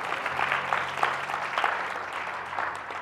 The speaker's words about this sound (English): Here we go. Here we go. Give God another hand clap of praise.